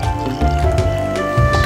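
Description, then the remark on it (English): Lightly carbonated cider is poured steadily into a martini glass, with a continuous gurgling splash and a faint ringing tone from the glass, no talking over it. “Let's give it a pour here into our Bukkake martini glasses.”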